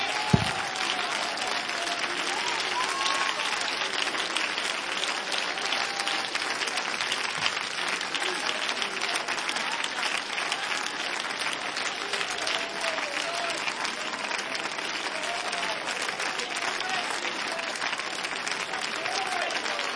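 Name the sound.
audience clapping hands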